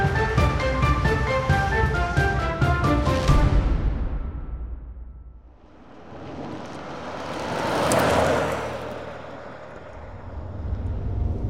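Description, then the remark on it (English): After a few seconds of rhythmic, tonal music, a car's engine rises into a broad rushing roar that swells, eases off, then builds again. No one speaks. “That's why we're driving down here.”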